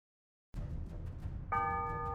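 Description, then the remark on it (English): Church bells ring out over a low, rumbling outdoor ambience, with a loud bell strike that hums and sustains steadily. No voices are heard. The bells ring across the courtyard of the Bastille fortress prison in Paris on a chilly day in 1703. “On a chilly day in 1703, church bells rang across the courtyard of the Bastille, the fortress prison in the center of Paris.”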